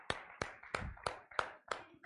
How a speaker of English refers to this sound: Give him one more hand clap of praise this afternoon. Hallelujah.